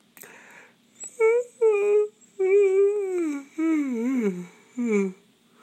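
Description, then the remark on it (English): A long, drawn-out waking-up yawn from an old man of about 65 stretching his arms, voiced in several groaning stretches with sliding pitch, ending in a falling moan; no words are spoken. “That's a waking up yawn, which sounds a lot like a going to sleep yawn, but they're different.”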